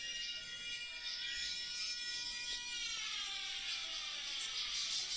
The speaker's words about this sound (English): Imagine a big ass fucking tsunami comes out of nowhere, fucking bro. Siren, bro. That's fucking scary.